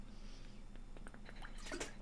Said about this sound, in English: A little sip of water to keep me going.